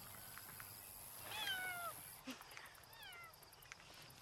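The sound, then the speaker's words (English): A cat meows twice, two high, drawn-out cries a second or so apart, fairly soft against a steady background hiss with no one talking. “Is that a cat in there?”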